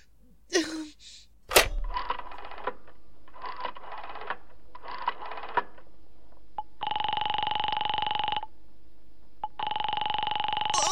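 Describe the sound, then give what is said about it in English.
A telephone is handled with a few clicks, then dialed in a series of short bursts to call the operator, followed by a steady ringing tone that sounds twice on the line with a pause between. “I'll call the operator again.”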